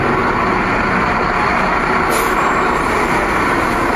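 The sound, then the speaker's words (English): A steady, loud rumble of heavy vehicle engines fills a Birmingham street, with a brief hiss like an air brake midway through, as a bus creeps along in dense traffic. “There's not even any taxis getting through. There's no... Well, that bus is moving.”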